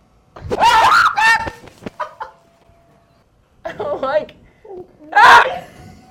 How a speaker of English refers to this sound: This is the audio from the mystery screen box. I'm just going to apologize in advance for some screams. It's loud.